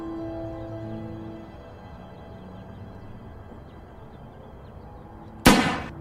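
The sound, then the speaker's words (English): A single loud suicide gunshot in a film scene cracks near the end, sharp, with a short ringing decay, after several seconds of quiet low droning tones that fade away. “I wanted a second suicide gunshot.”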